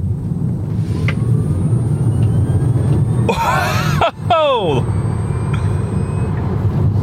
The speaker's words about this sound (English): So, like, you're not going really fast, but it feels so fast. The acceleration in an electric car is just incredible. Feels like we've turned this A road into a little runway. It was so immediate.